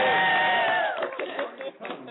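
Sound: group cheering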